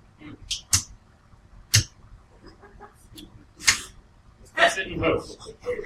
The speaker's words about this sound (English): Slap sound.